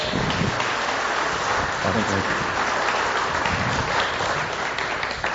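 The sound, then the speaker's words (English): A crowd claps steadily and loudly, a dense wash of applause that sounds like rain, with voices murmuring beneath it throughout, welcoming a visiting reverend. “can we just give him a round of applause and welcome?”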